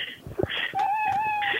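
A single drawn-out, plaintive meow, like a sad cat, holds a steady whining pitch for about a second after a few soft rustling thumps. It is clear, with no talking.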